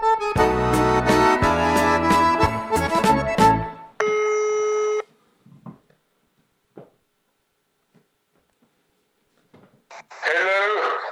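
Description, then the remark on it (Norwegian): After a burst of music, a single steady electronic telephone ringing tone sounds for about a second as a call is placed, followed by a stretch of near silence before a voice speaks at the end. “…, ringer vi.”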